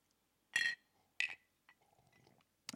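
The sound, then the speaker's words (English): Glasses of whiskey clink together in a toast, several bright ringing taps spaced about half a second apart, fairly loud, with faint rustling in between and no talking. “So raise your glasses. All right, here's today's toast.”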